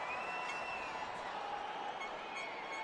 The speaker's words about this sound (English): Crowd loves it. They go nuts.